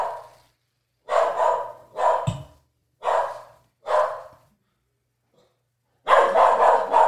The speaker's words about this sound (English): And some dog barking.